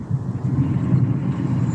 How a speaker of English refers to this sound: Alright, so I, if you guys can't tell, if I sound a little weird, I'm actually in my car. We are Discord calling all of this. We're all in our own separate areas. I am in a car on my phone driving back from Boston